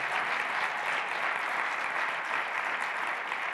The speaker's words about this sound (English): And if you have a father in your life that has taught you how to be fruitful, you need to applaud that man right now.